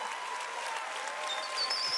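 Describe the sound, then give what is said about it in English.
A church audience applauding the morning's speakers, steady dense clapping that swells slightly louder toward the end, with a few faint whistles rising above it. “Church, across all of our campuses, can we clap it up for our amazing speakers this morning?”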